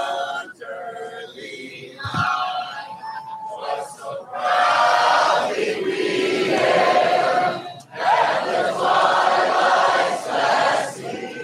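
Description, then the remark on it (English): A large crowd at a Trump rally sings the national anthem together while Trump is speaking, in a loud, sustained swell of mixed voices, the chorus rising and falling with a brief dip partway through before carrying on strongly. “While Trump was speaking, the crowd started singing the national anthem.”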